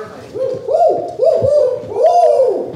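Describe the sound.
A person imitates a spotted owl's call, voicing a series of about four fairly loud hoots that rise and fall in an uneven rhythm, with no other sounds around them.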